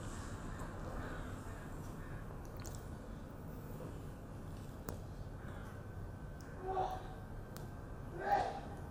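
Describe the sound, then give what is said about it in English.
A short, sharp sneeze bursts out near the end, following a softer breathy catch a moment before, over a steady low background hum. “Bless you.”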